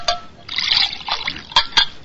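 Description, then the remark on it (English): Water is poured into a glass, a brief trickling splash lasting a second or two and ending with a couple of sharp little clinks or spatters. No one speaks. “Please, the water.”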